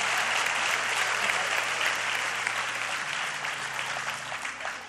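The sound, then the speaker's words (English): Steady audience applause at a church service, a dense wash of many hands clapping at once, loud and sustained for several seconds before easing slightly toward the end. “And would you give Caleb a round of applause?”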